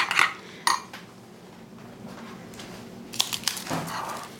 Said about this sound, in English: I'm just going to pour a splash of milk in. Stir that in, and then you see it just loosens the texture up.